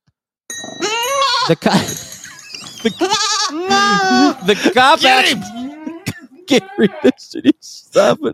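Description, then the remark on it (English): A goat bleats loudly and repeatedly, its wavering, nasal cries coming in quick bursts with brief gaps, ending in a few shorter calls. “One of the cops running through the field trying to catch this guy when a goat from a neighboring farm decided to chase him too.”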